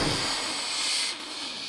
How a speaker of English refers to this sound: That's the biggest pause you've left before you've emerged as a genie. I had to let all the fizz settle. There was a lot more fizz that time. Was there? It's a lot of fizz.